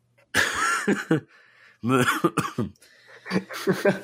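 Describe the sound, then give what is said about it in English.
Several dry, hacking coughs come in three bursts, each a quick cluster of harsh barks with short pauses between, loud. “And I have a weird cough. It's dry.”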